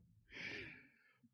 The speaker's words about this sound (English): Like the Benny's snoring on my lap, by the way. I've put Benny to sleep. He's just laying here snoring on my lap.